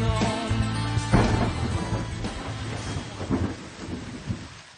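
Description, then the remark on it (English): Deep thunder rumbles and rolls over a steady downpour of heavy rain that has started again, loud, with a few sharper swells of noise through the storm and no voices. “Started again. Rain coming down.”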